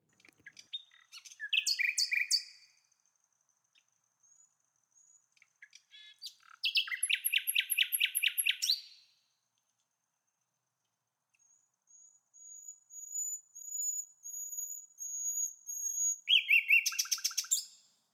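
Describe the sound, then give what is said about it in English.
A nightingale sings alone, clear, in varied bursts of rapid trills and chirps, then a long, thin sustained whistle rising into a final flurry of notes, separated by short pauses. “This piece is just pure Nightingale. There's none of me in it at all.”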